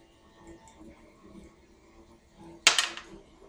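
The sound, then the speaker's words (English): A single six-sided die (D6) clatters onto a table during a tabletop role-playing game fighting roll, landing on a 1: one sharp, bright click followed by a quick burst of smaller rattling taps that fade within half a second, after a stretch of quiet room tone. “Alright, roll his D6.”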